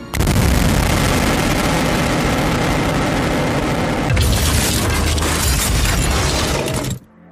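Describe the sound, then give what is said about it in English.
A massive explosion of an entire penthouse erupts into a sustained roar of booming rumble and shattering debris, staying loud for several seconds before cutting off abruptly. “Just then, as if on cue, the entire penthouse explodes.”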